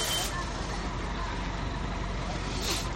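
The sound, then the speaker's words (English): A bus idles with a steady, dense engine rumble and broad hiss that barely changes while people get on, with indistinct murmuring voices blending faintly into the background. “Now, here's some people getting on the bus as well.”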